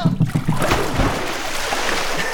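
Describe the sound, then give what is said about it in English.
A heavy cannonball jump into a swimming pool: one loud, broad splash crashes in, then churning, sloshing water hisses and settles steadily for the rest of the moment. “There are no sharks in the pool. But I do keep a Bengal tiger in the living room. I'm gonna assume you're joking, right? Cannonball!”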